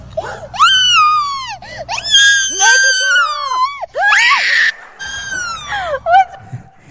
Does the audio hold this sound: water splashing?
no